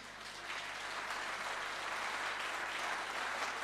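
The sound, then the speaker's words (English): A church audience at Derby City Church claps steadily as a clap offering for Jesus, a dense, sustained wash of many hands applauding at a fairly even level, with no voices standing out. “Give a clap offering for Jesus.”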